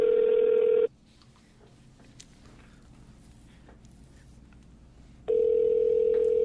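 A phone call rings out: a loud, steady electronic ringback tone sounds for about a second, gives way to several seconds of quiet background, then starts again.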